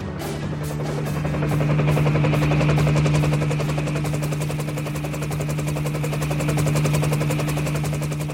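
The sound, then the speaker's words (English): A Navy rescue helicopter equipped with a winch, which took off from a San Joaquin Naval Air Station, drones steadily, its rotor chop pulsing in a rapid rhythm over a low engine hum, loud and continuous with no voices. “a specialized rescue helicopter equipped with a winch, took off from a San Joaquin Naval Air Station.”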